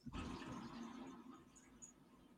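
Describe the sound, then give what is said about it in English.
A loud toilet flush surges in abruptly and rushes steadily for a couple of seconds, a broad roaring gush of water with no one speaking. “We heard that one. It was a toilet flush, not a.”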